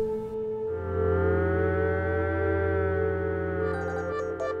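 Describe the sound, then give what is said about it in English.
A computer's zip drive whirs as a zip disk, a blue or gray plastic disk with a large metal clip, is inserted: a steady mechanical whir with a strong humming tone, rising slightly as it spins up, then holding level for several seconds, with a few faint clicks near the end. No talking. “You hear it whir when it's inserted into the computer's zip drive, like a small tape.”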